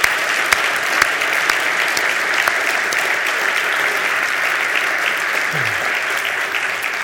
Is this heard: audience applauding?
yes